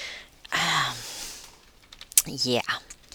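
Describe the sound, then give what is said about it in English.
A computer keyboard gets pressed in a few scattered, irregular clacks as a cat walks across the keys, mixed with brief voiced, whiny sounds. “why don't you just get off the keyboard?”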